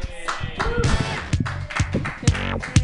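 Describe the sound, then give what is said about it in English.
An audience claps steadily for a performer's first time, a dense patter of many hands with sharp louder slaps popping out now and then, with some cheering voices mixed into the applause. “Keep clapping because it was her first time.”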